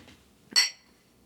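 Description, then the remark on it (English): Beer glasses of tart sour beer made with guava nectar clink together once in a toast, a bright, ringing chime that fades within a moment against an otherwise quiet background. “It's another sour beer. They added guava nectar to the mix, and also really nice, very pleasant tasting.”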